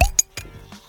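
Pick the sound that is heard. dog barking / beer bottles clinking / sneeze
beer bottles clinking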